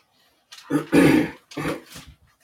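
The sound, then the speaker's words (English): A couple of rough coughs and throat-clearing bursts come in two quick clusters, fairly loud, with no talking around them. “So with that, let us turn to the Holy Quran before I completely collapse in a fit of coughing.”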